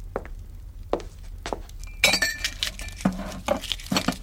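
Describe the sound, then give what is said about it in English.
Glass clinks and chinks as a woman handles a wine glass and pours herself a glass of wine, with several sharp ringing taps scattered over a few seconds and a soft rustle underneath. “Athenia pours herself a glass of wine.”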